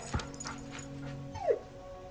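A dog gives a single short bark, then whines in a long, steady tone and ends with a quick high whimper that slides downward, fairly loud.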